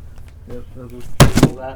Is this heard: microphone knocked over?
yes